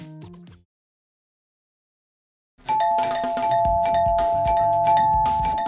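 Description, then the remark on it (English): A brief opening sound gives way to silence, then a loud, sustained bell at the gates of a candy factory rings with steady tones over a busy, layered background of clanking and mechanical noise. “we're pulling up to the Snoot Candy Factory gates, where Lucy is about to ring the bell”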